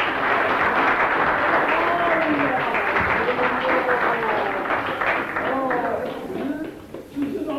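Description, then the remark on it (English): An audience claps steadily to welcome a woman being introduced, a dense, loud wash of applause, with voices calling and cheering through it; the clapping thins out slightly toward the end. “Give her a clap.”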